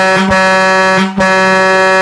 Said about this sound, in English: Would you just get into a fetal position on the street? Because that wouldn't be phantom honking. That would be real, and you'd be in big trouble.